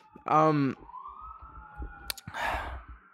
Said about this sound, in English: There's so many sirens outside. What the fuck is going on?